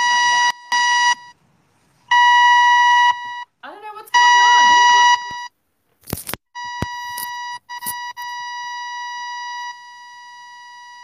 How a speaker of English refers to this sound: I've just got this really loud buzzing now in my ears. Let me see if I've got another set of headphones.